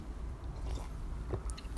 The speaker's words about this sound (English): Sorry for my voice. Excuse me. Let me get some water.